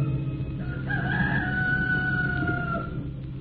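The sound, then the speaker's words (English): A rooster crows one long, drawn-out cock-a-doodle-doo in the cool morning. It holds a steady, slightly falling pitch before trailing off, heard over a constant low rumbling background noise. “And in the cool morning, while the farmer figured the trigger of his blunderbuss, the knock-kneed man turned on his back as the cock crowed twice and opened his eyes.”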